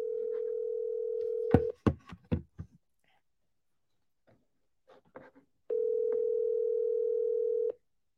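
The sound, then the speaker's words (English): A steady, mid-pitched ringback tone of an outgoing phone call that goes unanswered sounds twice, each ring about two seconds long with a long pause between, plus a few sharp clicks and knocks after the first ring. No one speaks. “You have to answer your phone.”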